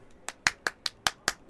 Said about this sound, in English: Why are you clapping?